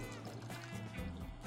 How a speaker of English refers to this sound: And we're going to pour the rum and cherry and pineapple into our glass. And then we're going to add a bit of bubbles to the top.